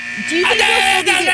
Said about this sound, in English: The minute timer just went off. Sorry about that.